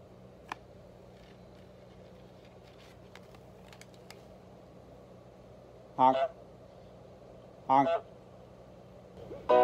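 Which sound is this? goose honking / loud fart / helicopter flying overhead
goose honking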